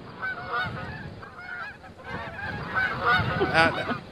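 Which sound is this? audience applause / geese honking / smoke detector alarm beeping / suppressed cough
geese honking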